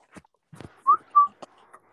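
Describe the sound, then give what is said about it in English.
Two short, clear whistled notes, a rising one followed by a steady tone, stand out over faint clicks and murmurs in the background. “Who whistling?”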